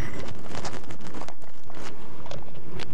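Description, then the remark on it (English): Sipping and swallowing of water, with soft slurps and mouth noises over a rustling, breathy background, no talking. “and let me take a quick sip of water before I take this next point.”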